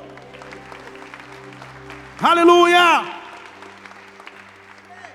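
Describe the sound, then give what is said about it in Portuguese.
A worship audience claps steadily for the Lord throughout, a dense patter of many hands, while a loud voice rises above it in a single sustained, sung-out shout midway. “Sei que você aplaudiu um pouco mais só para dar tempo de eu dobrar.”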